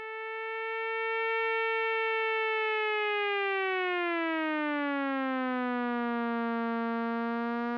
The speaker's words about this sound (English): Every oscillator, every second, it gets a new pitch and it just sort of wanders up and down. So here's what one of those voices might sound like, isolated.